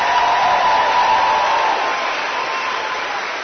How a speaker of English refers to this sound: Everybody please just give her another round of applause.